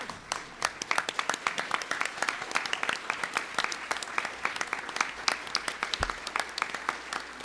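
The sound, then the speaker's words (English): A standing audience breaks into sustained applause for a procession, a dense patter of many hands clapping steadily at a moderate level for the whole stretch, with a faint crowd murmur underneath. “Let's stand as we give a round of applause to our procession.”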